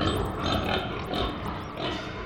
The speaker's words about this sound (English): Suddenly you hear a loud snort from behind you.